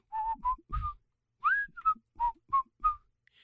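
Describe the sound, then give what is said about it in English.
A person whistles a short, bouncy pop-style tune of about eight quick notes, clear, with brief pauses between phrases and no talking. “Nothing to say, though, that I can't whistle it, right?”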